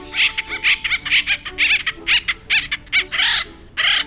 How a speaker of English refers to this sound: The drilling site becomes known as a granary tree because each of those holes is used to store individual nuts. The nuts are acorns, and the bird is the acorn woodpecker.